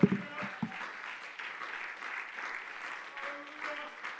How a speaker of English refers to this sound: Let's give the Lord a great hand clap of praise.